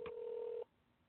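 A single steady electronic phone tone sounds for just over half a second after a brief click, then cuts off abruptly into quiet, thin line hiss: a dial tone over speakerphone as a call is placed through a regular phone.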